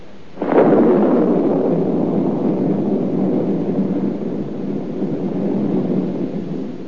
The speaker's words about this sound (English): No. That's just the old storm having a last blow. It's all over. It's spring now.